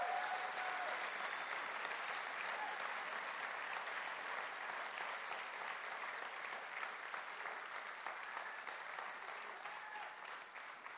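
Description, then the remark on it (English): An audience applauds interim pastor Chris Lazo, a dense crackle of many hands clapping at an even loudness for about eleven seconds, thinning only slightly toward the end. “You should applaud now.”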